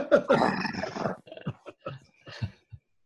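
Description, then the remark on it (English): A dog growls, a rough, rumbling snarl lasting about a second, followed by several short, sharp grunts and huffs spaced out over the next two seconds. “Well, they're all on edge. The dogs are certainly not. It's not that they're bad dogs.”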